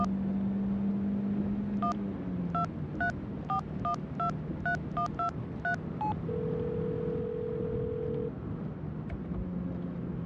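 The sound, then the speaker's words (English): A rapid run of about a dozen phone keypad beeps is followed by a single long, steady ringing tone that goes unanswered, all over a low engine-like hum. “God damn it. Answer your phone.”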